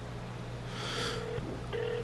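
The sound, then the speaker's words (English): An outgoing call rings out over a speakerphone and goes unanswered: two short, steady electronic ring tones about half a second apart, thin and fairly quiet over a low background hum, with no one talking. “Do you know where your fucking speaker is, That's you dumb dumb? Phone. You hear it, right?”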